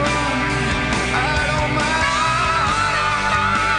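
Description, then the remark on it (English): A loud rock recording where male singer belts a strained, screaming vocal line over dense distorted guitars and pounding drums, sustained throughout without a break. “Well, that's not him screaming.”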